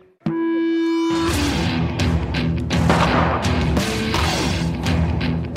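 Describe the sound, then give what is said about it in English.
A steady tone gives way to a dense, continuous barrage of sharp bangs and crackling pops outdoors in Libya, fireworks going off rapidly and loudly during a night-time celebration, with overlapping blasts and no pauses. “kids are selling fireworks across in the Marcus Aurelius Arch.”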